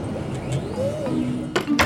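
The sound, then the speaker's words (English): An office door closes, ending in two quick, sharp clicks of the latch, over a low steady room hum with no talking. “Why don't you close the door behind you there?”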